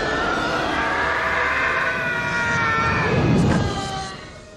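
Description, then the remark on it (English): The Howie Scream, a stock movie scream from the film Broken Arrow, where Howie Long's character is kicked out of a train on a bridge and falls down a cliff: a man's long, high-pitched scream wails for about four seconds, wavering in pitch before trailing off and fading out. No one speaks. “Ever since then, this scream has been known as the Howie Scream.”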